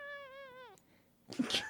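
A cat lets out a drawn-out, wavering meow that slides downward at the end, followed after a short pause by a harsher, noisier yowl. Fairly loud, with no talking.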